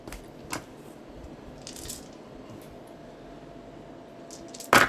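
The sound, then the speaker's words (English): Dice rattle and scatter across a hard surface: a handful of sharp, scattered clicks and taps over a low background hiss, ending in a sudden louder clatter. “Some dice! That's really good because they went everywhere.”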